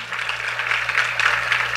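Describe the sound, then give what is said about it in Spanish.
A crowd applauds steadily for the Lord and his word, a dense crackle of many hands clapping at once at an even level, with a low steady hum underneath and no voices. “Denle un aplauso al Señor, a su palabra.”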